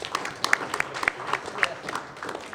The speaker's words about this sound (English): Nice round of applause for Steve Mathis.